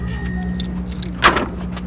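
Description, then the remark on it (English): A blue bike-share bicycle in Boston, Massachusetts, is unlocked and clunks free of its dock in one sharp metallic rattle, heard over a steady low hum of traffic or idling engines. “After months of driving to work, I give my car a break and unlock a blue bike.”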